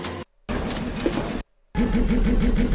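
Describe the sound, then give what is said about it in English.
A pod racer engine sound effect roars in three loud bursts broken by short gaps of silence, a harsh buzzing snarl with a rapid, pulsing low throb and no voices. “The sound of the pods. The pod chasing. The pod racer, right?”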